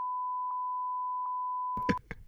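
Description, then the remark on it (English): A loud, steady censor bleep holds one pitch for about two seconds, blotting out a spoken social security number, and a voice briefly emerges as the tone cuts off. “if you want to bleep stuff, my social security number is”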